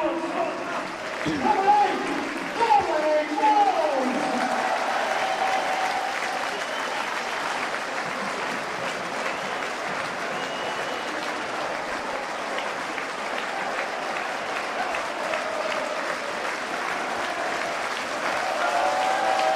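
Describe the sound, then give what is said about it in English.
A stadium crowd roars and cheers after Dom Vose scores to give Wrexham a 3-0 lead over Gateshead, a loud, steady wash of applause and shouting that swells at the start, with a few shrill whistles, and carries on without letting up. “And just listen to that reception.”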